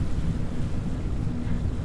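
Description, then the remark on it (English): A hover truck carrying robots in its back drones steadily across a shallow river, a constant loud low rumble mixed with wind buffeting and the wash of water, with no voices. “when they made us memorize all those specs for these bots, I didn't imagine I'd be hoisting them into the back of my truck to hover them across a river.”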